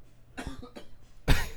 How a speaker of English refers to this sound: I'm all right. Sorry if you heard me coughing.